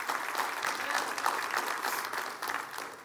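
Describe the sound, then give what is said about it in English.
A church audience applauds their pastor, many hands clapping in a dense, steady wash of sound that holds at an even, fairly loud level throughout, with no voices rising above it. “Go clap for him.”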